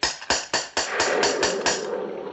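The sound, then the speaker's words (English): A metal door knocker bangs on a gate on a stormy night about eight times in a quick, steady rhythm, each blow sharp and loud, before the knocking stops and a low rushing noise remains. “Here's the knocker.”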